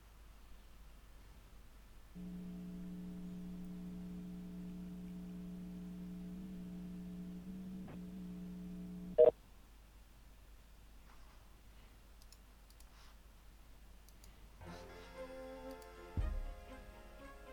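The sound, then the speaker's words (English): A faint, steady electronic phone tone drones for about seven seconds while a call is put through by PPG Industries' automated voice-dial phone directory, ends in a sharp click, and a short second tonal burst follows later. No one speaks. “Ringing”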